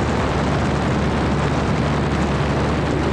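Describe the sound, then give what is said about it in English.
A small Cessna airplane's engine roars steadily inside the cockpit, a loud, constant droning rumble with a low throbbing hum underneath that fills the whole clip without pause. “Well, it's hard to get good audio in a plane, you know?”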